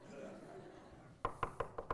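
Five quick, evenly spaced knocks on the front door of a house ring out sharply, following a stretch of low, muffled background murmur.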